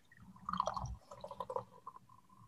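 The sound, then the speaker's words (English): Coffee pours steadily into a cup, with a bright gurgling burst at the start that settles into a lighter, trickling fill before tapering off. “So I'm going to pour mine and...”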